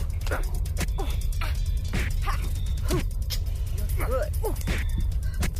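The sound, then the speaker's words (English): A rapid flurry of sharp, punchy kicks and punches in a fight scene, about seven in quick succession, mixed with strained grunts and exclamations over a steady low rumble. “And here's the fight scene. I'd never done mixed one of these before. A lot of kicks and punches.”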